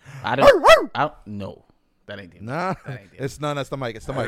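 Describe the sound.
A man's voice imitates a dog, letting out a rapid run of loud barks, then a pause before rougher growling and more bark-like yelps.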